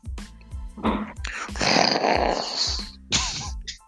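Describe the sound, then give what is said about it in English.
A person imitates Godzilla breathing fire, with loud rasping, roaring bursts of breathy noise and growling pulses, lasting several seconds. “This is my impression to give a fucking Godzilla breathing fire shit.”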